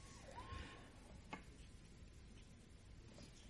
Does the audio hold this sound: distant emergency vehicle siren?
yes